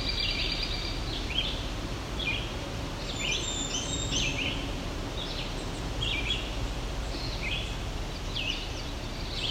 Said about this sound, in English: That was the indigo bunting just before the pine warbler. So we're at the pine loop. It is a stand of what looks to be red pine.